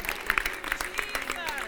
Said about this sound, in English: I know where I've been. That's why they're all cheering the way they're cheering, because they know where they've been.